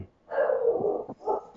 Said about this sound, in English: Dog is nuts, probably because the cat's outside or something. That dog's wasting our precious time.